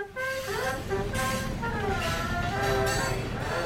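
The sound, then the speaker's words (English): A steam train's whistle sounds in several sustained, wavering tones over a steady low rumble of the engine and rolling cars, loud, with no voices, as the train arrives at Munich's main train station, the Centralbahnhof, in early October 1896. “Now we've arrived in the bustling Bavarian town via the main train station, the Centralbahnhof, along with hundreds if not thousands of other visitors who have come for the internationally renowned testament to Bavarian culture, food, and drink,”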